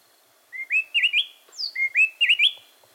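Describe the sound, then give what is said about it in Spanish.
A mated pair of wrens in the mountains of southern Mexico sings a tightly interlocking antiphonal duet, each bird taking one phrase: clear, rising whistles and quick higher notes, two bright phrases repeated back to back, loud with no talking. “Los saltaparedes cantan a dueto.”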